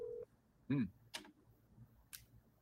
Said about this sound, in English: We call it? Okay, we're calling.